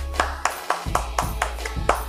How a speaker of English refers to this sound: I was going to hit the clap, but Ronnie got me on that one